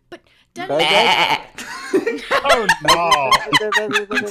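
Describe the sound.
A person lets out a loud, wavering bleat imitating a sheep, about a second long, then breaks into rapid choppy laughter-like vocal bursts.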